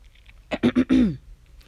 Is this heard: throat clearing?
yes